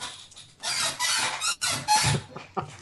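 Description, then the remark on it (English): An office chair gives a run of scraping squeaks and creaks, several rough bursts in quick succession with brief pauses between them. “The squeaky chair is back.”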